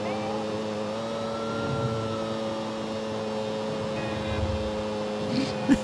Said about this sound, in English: Listen to the bike whine.